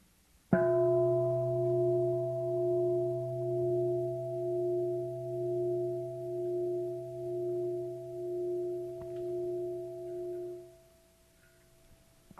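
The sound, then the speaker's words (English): A meditation bell is struck once, then rings with a steady, layered tone that pulses gently as it sustains for about ten seconds before fading out. No one speaks. “And so what that means is, when we listen to the sound of the bell, can we just listen to it?”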